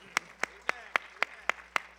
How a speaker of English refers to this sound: Everybody said in Jesus' name, clap your hands on the Lord if you're going to help me preach.